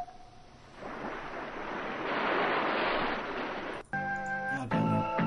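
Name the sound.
ocean waves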